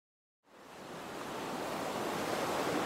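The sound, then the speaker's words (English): Ocean surf of the Pacific Ocean off the coast of California rushes in after a brief silence, swelling into a steady, broad wash of breaking waves that grows gradually louder, with no voices present. “Alone in the Pacific Ocean, off the coast of California,”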